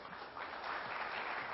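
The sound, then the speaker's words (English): A church audience breaks into steady applause, a dense wash of many hands clapping at once, fairly loud and sustained, with no voices rising above it. “We can clap for them.”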